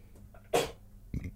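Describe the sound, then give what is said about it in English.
A dog gives a sharp, hacking cough, followed a moment later by a shorter, lower retching huff as it brings up a bit of the last biscuit it ate onto the carpet, then re-eats it. “He's just coughed up a bit of the last biscuit he had and re-eaten.”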